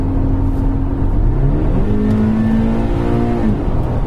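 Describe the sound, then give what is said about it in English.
A flat-four sports car engine of about 197 to 200 horsepower, in a car weighing 1,240, revs up loudly, its pitch climbing and holding before easing back, with a steady rumbling drone underneath throughout. “With a lots of noise, not a lot happened. Flat four, yeah, really.”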